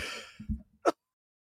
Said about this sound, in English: Sorry, I'm going to cough.